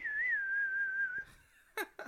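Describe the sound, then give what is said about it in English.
A clear, sustained whistled western movie theme melody with gentle pitch wavers, held steadily for over a second before trailing off, followed by a couple of brief breathy sounds. “You whistle. No, do the whistle.”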